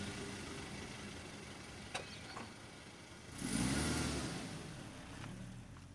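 A car engine rumbles low and steady, then revs up loudly around the middle and eases off as the car backs out of a driveway and drives off. A sharp click comes just before. No one speaks.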